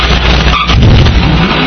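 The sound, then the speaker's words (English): A team's vehicle engine revs loudly as it rolls in at good speed in a timed competition, a heavy low rumble that swells briefly midway, mixed with broad rushing noise and no voices. “Here they come rolling in. Good speed.”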